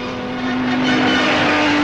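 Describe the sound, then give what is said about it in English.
A racing car engine screams loudly and steadily, its high whine climbing slightly in pitch as it speeds past a steeply banked corner during the German Grand Prix on the Avis circuit in Berlin, with no voices. “It's the German Grand Prix on the fantastic Avis circuit in Berlin.”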